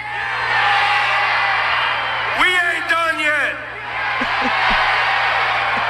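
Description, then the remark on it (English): A crowd of Kansas City Chiefs fans cheers in a steady roar, with a loud, rising whoop and yells bursting out partway through and a few shorter shouts afterward. A man speaks briefly over the noise. “So I'll make sure to hit y'all back next year, and I hope the crowd's the same.”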